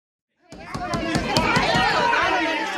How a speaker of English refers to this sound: Why are the doors locked? There's a crowd out front.